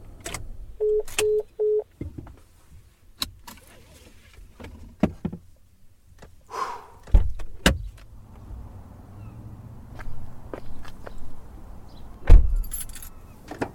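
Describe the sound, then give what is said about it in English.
A woman climbs out of her white truck in the Maryhill State park parking lot and stands next to it: three quick door-chime beeps, keys jangling, rustling movement, then a solid door thump and another later, with no talking. “gets out of her white truck and stands next to it.”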